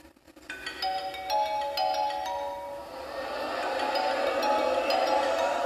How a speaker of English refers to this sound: Go and answer your phone, niggas. Get that shit out of here. I'm in the middle of something important.